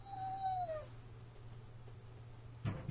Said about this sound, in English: Someone's not happy. I think my dog needs to go to the bathroom.